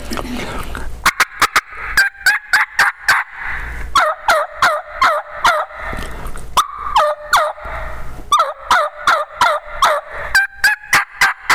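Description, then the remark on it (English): Close, loud runs of turkey yelps imitated on a hunter's call: hen yelps answered by rougher jake yelps, each run a steady rhythmic string of sharp notes, with no talking. “I'll actually hen yelp the sexy hen he's been hearing, and then I'll answer it with those Jake yelps”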